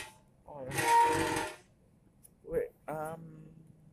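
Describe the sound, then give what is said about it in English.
A chair being adjusted gives a loud burst of about a second of rattling, hissing mechanical noise. Then a couple of short bits of speech follow. “I need to adjust. Adjust this chair.”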